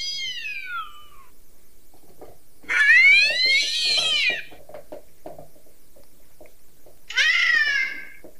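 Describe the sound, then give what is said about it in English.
A cat meows loudly three times, with long, drawn-out, wavering cries spaced a few seconds apart, with no talking. “But what about cats? What about the cats?”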